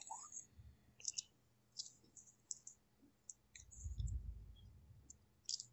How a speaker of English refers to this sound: I'm normally faster than the typing, but I'm on a laptop, so it's a little annoying to me.